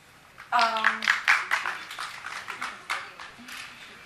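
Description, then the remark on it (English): A burst of audience applause, scattered claps over a crowd's rising cheer and a drawn-out whoop at the start, swelling quickly and then tapering off over a few seconds. “Mom applause.”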